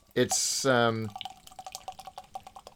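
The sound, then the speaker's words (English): A sharp fizzing hiss as a beer is cracked open, then a loud pouring sound whose tone rises as the Glenafric glass fills, fading into soft crackling fizz and scattered drips. “But this, I'm going to crack it open now and pour it into my beautiful Glenafric.”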